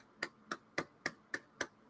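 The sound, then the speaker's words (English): Six sharp finger snaps in a steady rhythm, roughly a quarter second apart, each a crisp bright click over faint background hiss, given in place of applause. “Get a thumb snap.”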